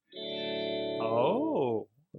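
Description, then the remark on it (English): A device's electronic power-on chime as it is clicked on and connects to a phone: a buzzy, sustained synth tone that swoops up and back down in pitch midway, lasting under two seconds before cutting off, with no talking over it. “And then give it a second and it pops on to, you hear that little chime?”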